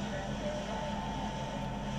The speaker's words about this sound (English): On the ferry, it's a bit loud.